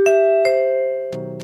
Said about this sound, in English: It's really hard to get a sound trademarked. The first one in the US was issued in 1978 to NBC for their chimes.